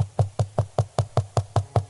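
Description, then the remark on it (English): A rapid, steady series of about ten solid, loud knocks on a door, evenly spaced, with a dull, hollow thud to each rap and no voices. “He knocked on the door.”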